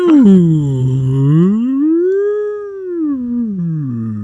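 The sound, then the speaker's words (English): A voice imitates a whale call: a single long, moaning tone, loud, that slides down, swoops back up, then falls away again over about four seconds, with no talking. “Why do we have a whale sound happening?”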